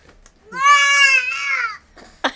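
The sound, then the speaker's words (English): A baby boy sitting in his high chair fusses with a single drawn-out, high-pitched whine lasting over a second, wavering slightly and fading, followed by a short sharp burst of sound at the end. “He's sitting right with us in his high chair.”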